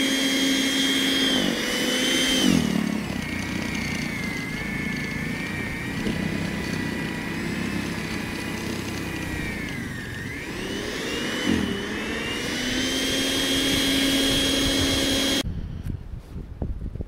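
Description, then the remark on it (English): A plugged-in electric snow blower with a push-mower-style handle clears snow from a driveway, running steadily with a loud whirring motor hum that dips in pitch twice as it bogs under load, then cuts off abruptly near the end. No one talks. “As you can hear, it's really not that loud. It's kind of like a big hairdryer, pretty much.”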